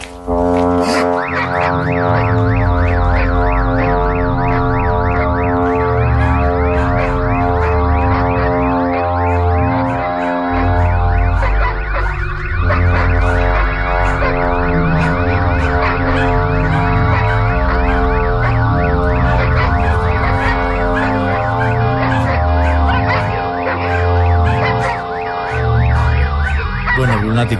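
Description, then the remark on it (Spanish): The Earth's hum recorded in Chile in 2013, tied to a great earthquake: a loud, unbroken droning blare of layered, siren-like tones holding steady for nearly half a minute, with deep rumbling throbs pulsing underneath and no voices. “ahí vamos a escuchar el sonido de la tierra, el zumbido en Chile, año 2013.”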